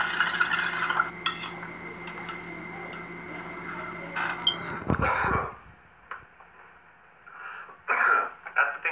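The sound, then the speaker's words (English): A few harsh coughs and throat clearing from smoking cannabis, in separate bursts roughly a second apart, over a steady low background hum, with no one talking. “They'll get you coughing because of the THC coating that these nugs have.”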